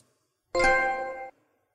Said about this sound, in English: Ugh. Yeah, that's like you've got a notification in Windows 95 or something.